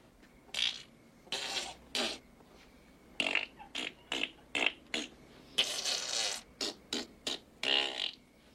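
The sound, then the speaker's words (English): A long run of loud sputtering fart noises, about a dozen bursts in uneven rhythm, some short and sharp, others drawn out and raspy, with no talking. “Then he started farting.”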